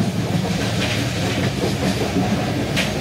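Steady rumble of a moving train heard from inside a slightly older passenger coach, with rhythmic wheel clacks over rail joints and faint hissing bursts, continuous and fairly loud with no voices.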